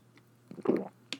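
drinking water

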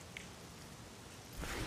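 rain falling

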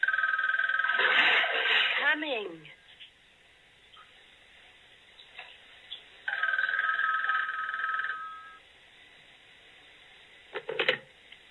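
telephone ringing

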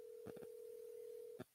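phone call dialing tone

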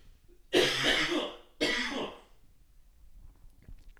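dry cough

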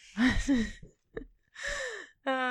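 throat clearing

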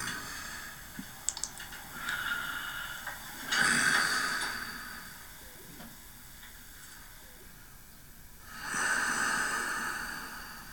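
heavy breathing and snorting

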